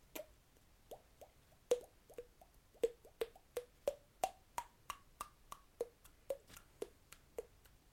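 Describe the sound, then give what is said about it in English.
A voice imitates raindrops with a rapid series of wet mouth plops, about twenty short pops in a steady, slightly uneven rhythm, their pitch bobbing up and down, clear against a quiet background. “Can you make it sound like a raindrop?”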